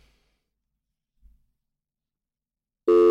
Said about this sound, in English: Oh, got some interference. I'm sorry, go ahead. I lost you for a second there.